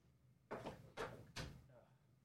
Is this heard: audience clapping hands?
no